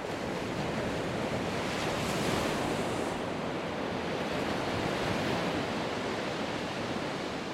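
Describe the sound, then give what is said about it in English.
Ocean waves wash against the shore at Arambol on a hot afternoon while a person surfs, a steady, loud roar of surf, swelling slightly early on, with no voices. “I feel the wave under the board, like an engine, accelerating me forward.”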